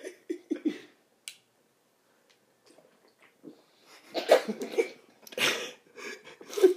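A single sharp, bright clink of drinks touching in a toast over a freshly opened beer, standing alone after a few soft murmurs, followed later by louder scuffling, breathy bursts.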